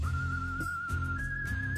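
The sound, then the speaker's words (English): A person whistles one long, steady high note that steps slightly higher partway through, over a low, continuous rumbling background. “Come on, whistle man. Do your thing.”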